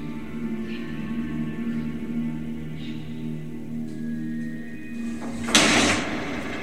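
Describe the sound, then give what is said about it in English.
A shed door is unlocked and pulled open: faint clicks over a steady low hum, then a short, loud scraping rattle near the end as the door swings. “And we unlocked it, went inside.”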